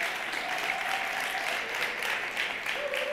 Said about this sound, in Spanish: ¿Cuántos le pueden dar un aplauso a Dios por eso?